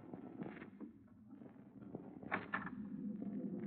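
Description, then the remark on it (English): A few light, sharp knocks by a woman on a ship's cabin door the night before docking in Southampton, spaced unevenly and fairly quiet, over a low steady background hum with no one speaking. “Then, the night before we were due to dock in Southampton, I was surprised in my cabin by an unmistakably feminine knock on the door.”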